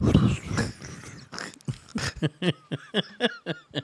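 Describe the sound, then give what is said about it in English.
A person imitates a shark's gruff, raspy growl for about two seconds, then breaks into a run of short, rhythmic bursts that sound like laughter. “What noise would that shark make when you put it in a headlock?”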